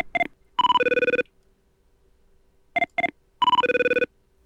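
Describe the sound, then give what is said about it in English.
A phone rings through a call line: two short electronic beeps followed by a longer warbling trill, the pattern repeating twice with a pause between, clear and fairly loud with no one talking. “He's got a landline, I think.”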